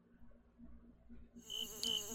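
A housefly buzzes with a steady, low droning hum, fairly quiet, briefly swelling louder and brighter near the end as it seems to pass by.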